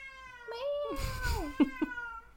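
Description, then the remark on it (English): A cat meows in a long, wavering, drawn-out cry that dips and rises, then ends with two short, sharp chirping mews, fairly loud with no one talking. “Meow. Are you a communist?”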